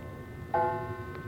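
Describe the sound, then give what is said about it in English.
A hall clock strikes eight after dinner: one clear resonant strike that rings and slowly fades, with the faint start of a second stroke just as the sound cuts off. No voices. “It's after dinner now, and as the clock in the hall strikes 8.”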